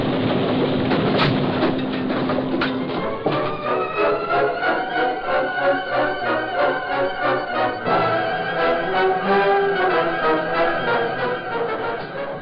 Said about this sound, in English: The sub's going to hit that old dock and the police will swarm all over it.